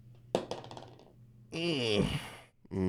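A quick clatter of dice tumbling and rattling across a tabletop, close by, followed by a long, wavering vocal groan without words.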